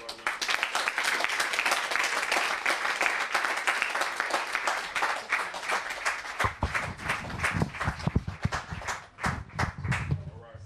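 An audience claps steadily for several seconds to welcome poet Reginald Dwayne Betts, author of Felon. The applause is a dense crackle of many hands, then thins into scattered individual claps and shuffling toward the end.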